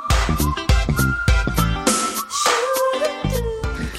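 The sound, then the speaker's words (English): A song with punchy, driving percussion, where a thin, bright whistle melody rides over the beat, holding notes and bending slightly in pitch throughout. “They kept the whistles.”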